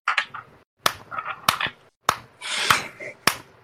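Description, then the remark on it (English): A slow, deliberate clap: five sharp, evenly spaced hand claps about half a second apart, with softer murmuring and rustling noise filling the gaps between them. “Why are we doing a slow clap?”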